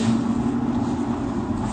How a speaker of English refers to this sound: A few days later, I climbed into his F-350, and we bumped down Texas Highway 128, a two-lane road connecting Andrews to Jal, New Mexico.